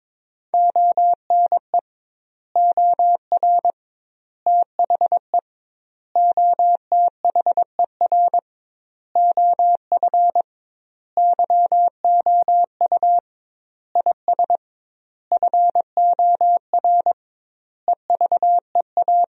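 Morse code practice sentences built from the top 400 words, sent at about 22 words per minute with doubled word spacing: a clean, steady mid-pitched tone keyed into rapid dots and dashes, falling into word groups separated by short silences, with no voices.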